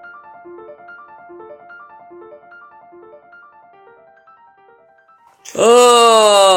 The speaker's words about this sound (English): That was a post-Mardi Gras yawn. Oh, I'm just waking up from Carnival, everybody.